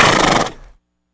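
A single loud, brief horse whinny, harsh and bright, lasting about half a second before trailing off quickly into silence. No one speaks.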